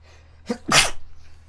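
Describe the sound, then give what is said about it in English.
A single sharp, fairly loud sneeze, with a quick breathy intake just before the explosive burst, standing alone against a quiet background. “Sneezing. That's one.”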